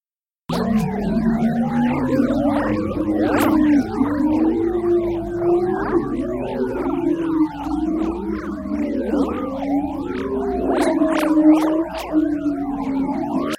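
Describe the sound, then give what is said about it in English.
Sonified magnetic wave data during calm space weather, the wave frequencies transformed into audible signals: a continuous, eerie wash of sliding, warbling tones and swooping whistles, whale-like and steady in loudness, with no voices. “This audio file contains a sonification of the data, where sounds are obtained by transforming the frequencies of these magnetic waves into audible signals.”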